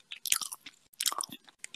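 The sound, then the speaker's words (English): Wet chewing of braised beef with rice, eaten for ASMR: two quick runs of soft smacking and crunchy mouth sounds separated by a brief pause, fairly loud and intimate, with no talking. “So today, for ASMR, we're going to be eating some braised beef with rice.”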